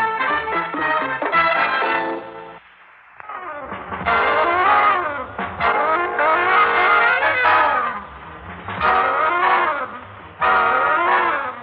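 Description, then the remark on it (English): A car roars past with tires squealing in several loud, sweeping bursts, a brief dip in the middle before the engine and screeching return. No one speaks. “I think there's a car behind us.”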